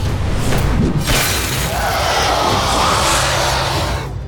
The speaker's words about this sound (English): Mjolnir smashed into one of Jormungandr's fangs, shattering it. Poison spewed out in an uncontrollable burst.